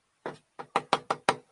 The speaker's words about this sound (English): It's like he's just using a little knocker on the door there.